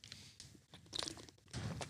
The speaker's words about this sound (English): Bit of ASMR for everyone at home there. Had a sip of water there.